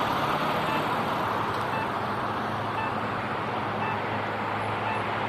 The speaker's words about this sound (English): Now, this is not my signal. Obviously, you can hear the cars moving perpendicular to us.